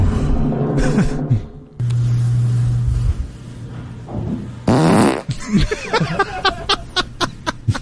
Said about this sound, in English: All right, and then here is the last one. This is the last fart that I have recorded on my phone. April 22nd, 2020.